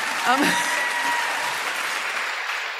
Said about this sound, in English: Oh, my God, I got a cheer.